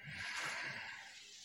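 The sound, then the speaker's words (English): A single slow, deep breath drawn in through the mouth during a counted breathing exercise, a soft airy hiss lasting over a second, quiet, with no talking. “Breathing in.”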